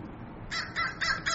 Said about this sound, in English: Now in shamanism, that's a sign. The crow. Now there's three of them. That's also a sign. They're coming right over us.